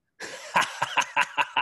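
A rapid coughing fit: about six harsh coughs in quick succession, each a sharp burst following hard on the last, with no talking.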